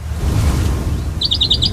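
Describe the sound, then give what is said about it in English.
A Carolina wren sings a quick run of repeated bright, ringing notes in a steady rhythm, starting partway in over a low outdoor rumble, clear, heard in the background of sound from a golf tournament. “Every single hole had the same exactly Carolina wren in the back of my apartment.”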